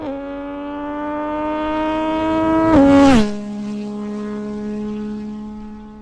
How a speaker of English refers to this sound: I'm going to tee up some melodious tones of an MT-09 with aero exhaust.